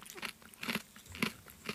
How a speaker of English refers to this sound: Well, I'm having a crunch. That's me crunching, everyone. There. They're actually quite nice, as long as I don't think about it too hard. Oh. Well, it's sweet chili and lime-flavoured crickets.